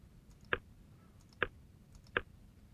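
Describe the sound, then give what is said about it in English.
Three short phone keypad tones beep one after another at a steady pace, each a brief electronic blip, as a zip code is entered on a call to Spectrum, fairly quiet over a low background hum, with no one talking. “Using your keypad, please enter the 5-digit zip code where you currently have service.”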